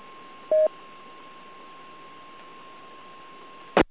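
A single short, loud DTMF autopatch dialing tone beeps through a hissy, band-limited radio channel over a faint steady whine, followed after a long pause by a brief crackling burst of static.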